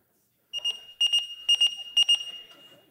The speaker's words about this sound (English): A timer. A timer. Okay, you can actually pick it up and look at it.